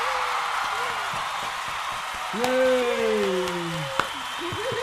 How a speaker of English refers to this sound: There's huge applause going on right now.